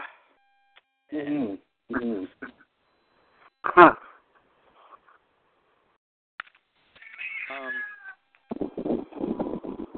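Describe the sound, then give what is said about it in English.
A cat meows several times, a pair of quick cries, then a longer drawn-out meow a few seconds later, followed by muffled voices talking at the end. “We hear you, Kitty.”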